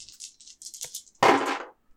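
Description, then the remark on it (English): Dice rattle in quick, bright bursts, as if shaken in a cup, then land with a loud clattering tumble that fades after about half a second as they are rolled for a check in a game. No one speaks. “Let's make a roll for it. Oh, shit. The dice are coming out.”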